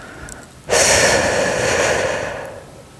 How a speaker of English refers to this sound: Place your tongue against the back of the top teeth and keep it there. Not pushing, just sitting there. Exhale completely through your mouth around your tongue, making a whooshing sound.